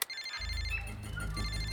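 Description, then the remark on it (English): A mobile phone rings in Claiborne, New Zealand, with a melodic electronic ringtone, bright tones layered over a steady, pulsing low beat. It plays loudly and continuously for a couple of seconds, with no voices; the call turns out to be a wrong number. “Hello? Is somebody there? Huh. Hi, Monica. Me again. Must have been a wrong number.”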